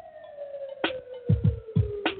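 signal or alarm, siren sound effect

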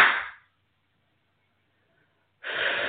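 human body sound, hand clapping

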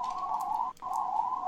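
vehicle, police siren passing outside

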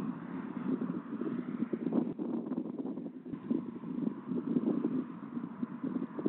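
vehicle, traffic noise

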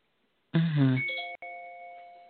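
household object, doorbell ringing

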